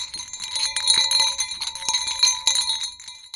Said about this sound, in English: And they tested a popular item marketed to alert bears to your presence. Bear bells.